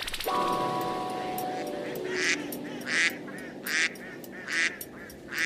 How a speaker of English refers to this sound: Birds.